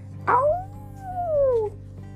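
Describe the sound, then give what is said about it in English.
A single coyote howl, starting with a sharp yip and rising into a long wavering tone that slowly slides downward, heard alone against a low steady background hum. “In the picture, we can see the shadow of a, I think it looks like a coyote, don't you think?”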